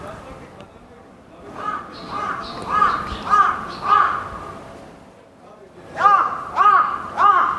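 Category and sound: bird, bird calling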